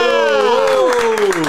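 A crowd claps steadily while a loud, drawn-out voiced cry rides over the applause, its pitch sliding slightly for about a second and a half.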